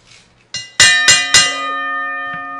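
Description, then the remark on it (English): A bell is struck four times in quick succession to mark a change of topic, each loud metallic clang layering into a bright, sustained ringing tone that slowly fades. No one speaks. “Even Thomas Burnett said that the first ringing was good.”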